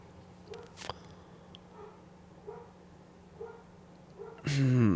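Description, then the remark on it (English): Dogs bark repeatedly, several muffled barks spaced irregularly over a steady low hum, before a loud voice cuts in near the end. “Quit barking, dogs.”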